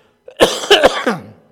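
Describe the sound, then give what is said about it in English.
A short burst of harsh coughing, three or four rough hacks in quick succession lasting about a second, with no talking. “So anyway, you can just say a quick prayer that this cough would be over and not continue to be the problem”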